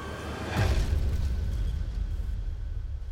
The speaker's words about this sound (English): And yet, about 7 miles from the diner, Karen's car suddenly veered across the road. She crossed the opposite lane onto the grassy shoulder and smashed head-on into a concrete culvert.